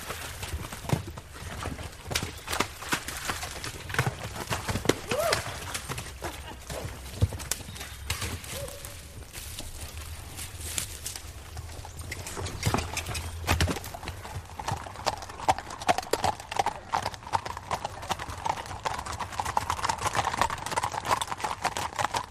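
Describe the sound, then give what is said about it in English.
The hooves of a hired hunting horse clip-clop in a steady, continuous rhythm of sharp knocking strikes, with a few louder hits toward the end and no one talking. “I'm over here just first time hunting, and I hired this horse, and it's the best horse I've ever sat on.”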